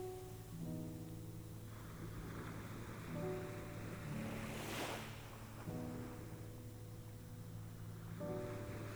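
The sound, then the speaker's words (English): Soft ocean waves wash gently onto a flat sandy shore, one swell building and fading midway, under a steady, quiet musical drone with sustained tones. “Gentle aquamarine waves glide slowly over the flat sands.”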